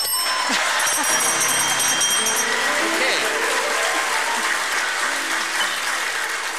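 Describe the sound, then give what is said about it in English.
An audience claps steadily and loudly for the whole stretch after Iowans who are not happy with who they are are asked to applaud, a dense wash of hand claps, with a bright ringing chime-like tone sounding over it during the first couple of seconds. “What do you think, If you're an Iowan who's not happy with who he is, would you please applaud at this time?”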